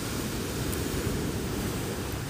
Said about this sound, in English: It's actually quite, I wouldn't say calm. Some fairly big waves, but I think the tide is now going out. You can kind of tell by how the waves are breaking now.